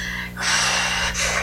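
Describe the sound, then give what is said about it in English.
A voice imitates the heavy panting of a short, pudgy kid walking up a hill, with two loud, breathy inhalations, the first long and rasping, the second starting just after a brief dip. “He was breathing real hard, wasn't he?”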